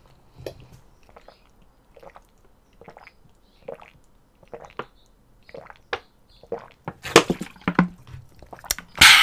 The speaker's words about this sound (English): So drink water right now. You have 5 freaking seconds to grab your damn water and drink it.